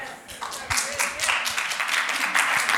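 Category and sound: crowd, sparse clapping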